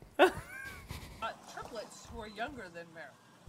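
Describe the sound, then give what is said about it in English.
A dog in a video, reacting to being given ice cream, lets out a short, high yelping whine right at the start, followed by a few more whimpering vocal sounds mixed with a person talking over it. “I would never give my dog ice cream.”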